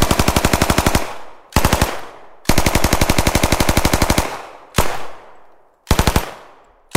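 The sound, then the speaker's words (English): Loud bursts of rapid automatic gunfire recorded in a city street, several long strings and a few short ones, each followed by a rolling echo that trails off between volleys. No voices. “But I thought that environment where that gun would be used, I mean, sounds like a city, kind of.”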